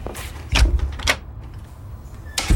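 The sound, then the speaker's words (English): A heavy prison cell door grinds open with a low rumble, punctuated by three sharp clanks spread over a couple of seconds, fairly loud, with no voices. “Okay, prisoner 2319, your cell is right through these doors.”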